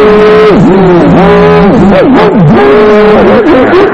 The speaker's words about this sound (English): You ever get your car stuck in snow, like axle deep snow? All the time. And all you do is you keep gunning it.